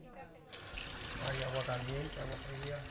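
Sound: water running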